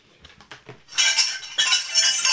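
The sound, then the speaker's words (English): A few soft knocks, then a bright, shimmering wash of harp-like flashback chimes swells in and rises again partway through. The chimes are loud, high and sustained, with no talking. “Because if we want to do a flashback, that means you have to have those fancy harpy chimes and stuff to get into a flashback, right?”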